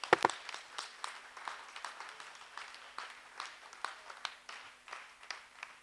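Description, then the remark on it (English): An audience clapping hands in praise to the Lord Jesus, a dense, steady patter of many overlapping claps with a few louder bursts at the start, continuing for several seconds without speech. “Let's give a clap to the Lord Jesus.”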